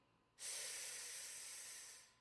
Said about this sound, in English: Oh, the breathing. The breathing, it was so important. It is really important.